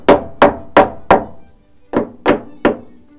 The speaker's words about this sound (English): It's quite agricultural, isn't it? You just hit it with a... just hit it with a hammer until it comes out. Nothing technical.